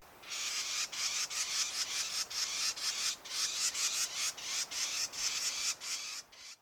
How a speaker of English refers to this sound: Often I'll be kind of tramping a little too loud in the woods, and then I'll hear the alarm call of the Carolina wren.